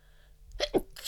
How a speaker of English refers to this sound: I think I'm going to sneeze.